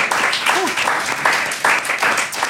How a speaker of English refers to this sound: Oh, another round of applause for ….